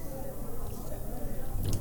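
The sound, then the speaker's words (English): Soft sipping of a 6.5% ABV dry-hopped farmhouse beer with Amarillo and Mosaic hops: quiet wet mouth sounds and a gentle slurp over about two seconds, with a brief brighter swallow-like click near the end. “And this is me sipping on it.”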